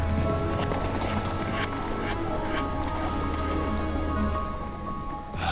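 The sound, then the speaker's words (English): Horse hooves clip-clop steadily in a brisk, continuous rhythm, loud, layered over a constant low droning background with no one speaking. “The elves, though, were on horseback.”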